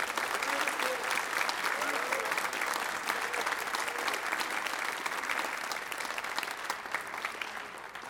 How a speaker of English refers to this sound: Well, clap your hands to the glory of the Lord.